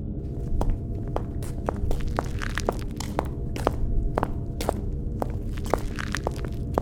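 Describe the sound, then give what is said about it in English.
Footsteps crunch over scattered popcorn kernels on a hard floor, a steady walking rhythm of sharp crackles over a constant low rumble, with no one talking. “Just feel around with your foot until you feel something crunch.”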